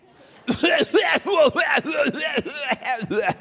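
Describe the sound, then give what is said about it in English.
A voice imitates an airplane passenger's coughing fit: a rapid, steady string of about nine harsh, throaty coughs, loud, with no talking around them. “We never ceased to amaze us how we could sit right in front of the person that always had to cough.”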